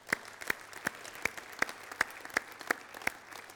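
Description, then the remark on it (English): An audience applauds, with sharp claps landing in a steady, even rhythm over a dense bed of softer clapping from the crowd, at moderate volume and with no one speaking. “Let's give them a clap.”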